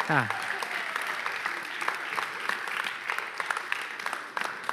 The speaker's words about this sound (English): Come on, praise God. Give God a hand clap for that.